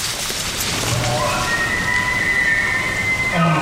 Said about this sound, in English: Everyone stops short when we hear elk in the distance. Martin says it's part of an overpopulated herd that was recently thinned out by a short hunting season allowed by the board.